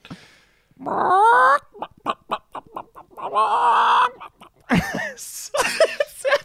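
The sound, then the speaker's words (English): A man imitates a chicken with a burst of exaggerated clucks and squawks, short choppy bursts mixed with drawn-out warbling cries, loud with no other sounds. “Just do a chicken cluck, mate.”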